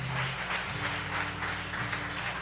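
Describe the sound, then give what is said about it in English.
A crowd claps steadily throughout, a dense wash of many hands with no pauses, and a low hum sits underneath. “So I applaud. Can we just applaud these?”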